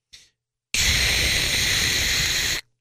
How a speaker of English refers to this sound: If you're on a plane, put on one of those apps for your babies to go to sleep to. White noise. It's like this.